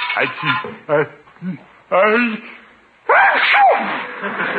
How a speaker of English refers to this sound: Bless you!